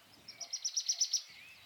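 birds tweeting softly

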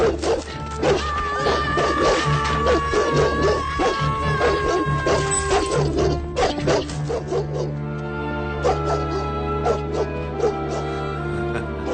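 pit bull dog barking

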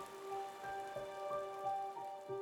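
rain falling

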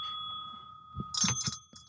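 bell ringing

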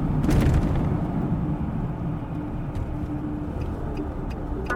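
car driving

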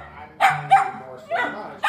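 dog barking loudly

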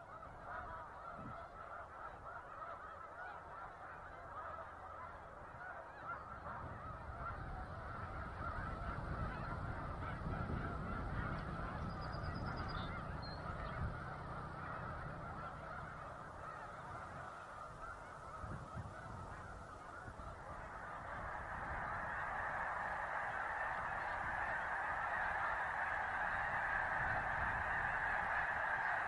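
snow geese honking

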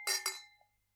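glasses clinking

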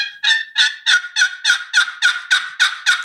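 wild turkey gobbling

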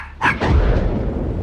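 dog barking

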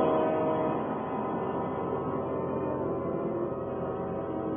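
subway train passing

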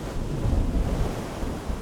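storm at sea

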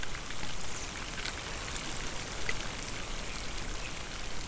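rain

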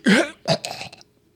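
cough

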